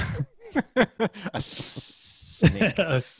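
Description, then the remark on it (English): Someone speaks briefly, then makes a sustained, breathy snake-like hiss with their voice for about a second before talking resumes. “A snake.”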